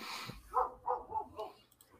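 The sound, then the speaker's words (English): Dogs belonging to the next-door neighbors bark a few times in quick succession, the barks sounding somewhat muffled, with a short burst of hissy noise just before them. “Dogs.”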